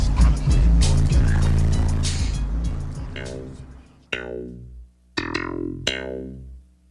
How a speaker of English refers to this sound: It seemed like every car that would go by, you know, bumping their stereo systems, it was the same bass line. You know, their whole car would rattle.